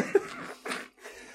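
A person coughs three times in quick succession, short raspy bursts, the first sharp and the later two rougher and slightly fading.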